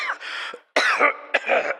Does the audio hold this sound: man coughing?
yes